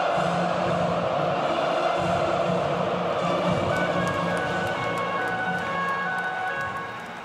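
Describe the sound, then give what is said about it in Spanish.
Many voices of Buenos Aires residents sing the national anthem together from windows and rooftops at 9 p.m. during the quarantine lockdown, with scattered clapping and the steady murmur of a large crowd spread across an open urban space, fading slightly toward the end. “Los aplausos no tardan en llegar. Y como cada noche a las 9:00 desde que comenzó el encierro, los porteños entonan el himno nacional a una voz desde ventanas y azoteas.”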